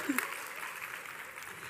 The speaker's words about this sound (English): Everyone just start clapping. It'll make it so much more fun. Yay. Yay for Veritas Women's Bible Study. It's so fun. Keep clapping. Yay.